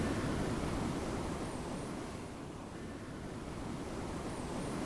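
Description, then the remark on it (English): Steady, gentle ocean surf after a storm washes continuously as the storm calms, with a soft swell easing slightly mid-way before rising again; a broad, even hiss with no voices, calm rather than crashing. “Just relax, he says, the storm becoming calm.”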